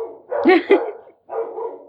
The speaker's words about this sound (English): And, oh no, it's dogs.